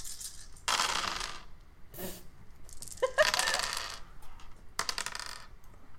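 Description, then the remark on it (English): Dice rolled for a strength brawl roll, with two added dice, clatter across a hard tabletop in several bursts of rattling, clicking impacts, fairly loud, with no voices. “Add 2 dice to your roll.”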